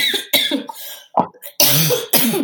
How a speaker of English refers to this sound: I don't have COVID. Poor thing, are you okay? The weather is changing here and it causes me to have smoker's cough. It's so bad.